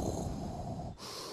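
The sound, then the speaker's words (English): Someone imitates Darth Vader's heavy mechanical breathing: a long, raspy, hissing breath followed by a sharper, airier draw, steady, with no talking. “Stop making all this sound with your breath.”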